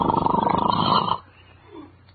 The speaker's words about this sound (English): Snoring? Who's snoring? I'm not snoring. It's that darn kid, that's who it is.